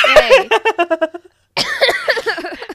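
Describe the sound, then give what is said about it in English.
A loud fit of coughing: a rapid string of sputtering bursts that tapers off, a brief silence, then another cluster of harsh, throaty coughs. “I was coughing.”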